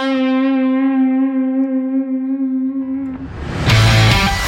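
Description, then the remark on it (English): A single guitar note, played in A minor pentatonic, rings out steadily for about three seconds with a gentle wavering vibrato added to it, then gives way to a louder, rough burst of noisy, distorted sound. “Okay, instead of just playing that note and having it be what I call static, just non-moving, what I want to do is I want to add a little bit of a wave to this.”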